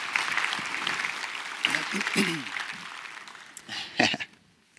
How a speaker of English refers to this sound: So if the people I'm interviewing, if you guys would make your way up and if you would give them a round of applause and make them feel welcomed as they come up.